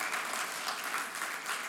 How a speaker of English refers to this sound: Now, would you clap? Because there's a party in heaven when people say yes to Jesus.